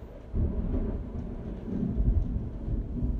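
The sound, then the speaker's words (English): Heavy rain pours steadily with a deep, rumbling roll of thunder swelling underneath, loud and continuous throughout with no voices. “Wow, it is really raining out there.”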